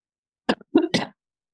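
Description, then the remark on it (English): Three quick, harsh coughs, the first short and sharp, the next two rougher and longer, followed by silence. “Hold on, I have to cough.”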